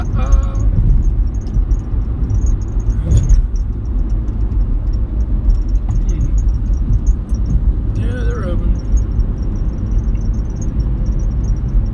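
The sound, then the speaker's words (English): A car wash cleans a Jeep. Its loud, steady mechanical rumble fills the whole stretch, with occasional brief high-pitched squeaks and whirs cutting through the constant low roar. “Car wash, guys. Gotta clean my Jeep out.”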